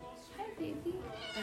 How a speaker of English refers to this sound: So many cats. Cats abounding.